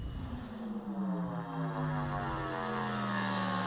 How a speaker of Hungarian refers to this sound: Ja, a repülős üldözés.